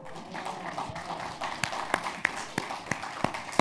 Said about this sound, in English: She does deserve that applause.